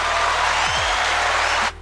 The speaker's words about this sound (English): Round of applause for my son